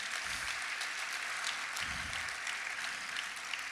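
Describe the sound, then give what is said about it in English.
A crowd breaks into steady, dense applause, many hands clapping at once in a continuous wash of sound that holds at an even, fairly loud level throughout. “You can clap for that.”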